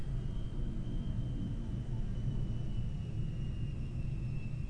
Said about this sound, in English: Wow, that's a really low flying plane. Is the plane landing in the backyard? Holy shit. Wow. I was like, what is that rumbling sound? Why am I hearing? At first I thought it was a train.